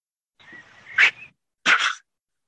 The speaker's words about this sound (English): And he comes across an owl. And I've got a sound clip of the owl encounter.